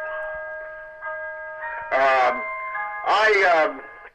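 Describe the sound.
A clock chimes, its steady, ringing tones sustaining throughout while people talk over it in two short bursts.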